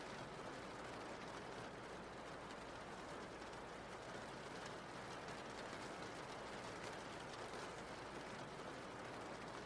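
Steady rain falls without pause, a dense, even hiss of countless drops spread across the whole clip, fairly soft and with no voices or other distinct sounds standing out.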